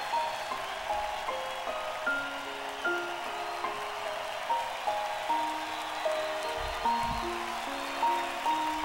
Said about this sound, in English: So there's some cheering to start.